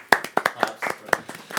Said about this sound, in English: Okay, like clap for like 12 seconds.